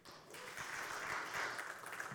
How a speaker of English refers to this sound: Thank you. I'm so grateful you clap. If you didn't clap after I said that, I wouldn't know what to do as I fumbled for my nose.